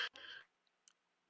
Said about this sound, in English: Each of you roll 1d20. I was about to say. Rollies. This is rollies.